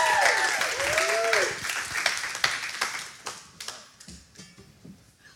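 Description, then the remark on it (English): A crowd at a morning worship service applauds to welcome a speaker up, with dense, overlapping hand claps and a few whoops and cheers early on, the clapping thinning out and fading over several seconds until only scattered claps remain. “Y'all supposed to keep clapping until she gets up here.”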